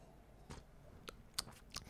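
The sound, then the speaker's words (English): A few short sips of hot Republica Tea Bold Black Chai, soft wet slurping sounds spaced out over a couple of seconds against a quiet background, with no talking. “Been sipping on it all day. Been sipping on it. Let's take a drink.”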